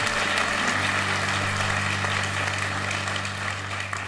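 An audience applauds in a dense, steady wash of clapping that holds for about four seconds and eases slightly at the end, with a low, constant hum underneath.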